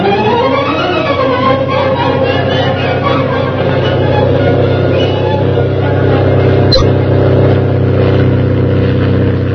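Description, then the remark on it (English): A fast plane roars past, its loud engine a steady, droning growl with a low hum underneath. The pitch climbs at the start, then holds. A single sharp click cuts through near the end. “a fast plane roars over his head.”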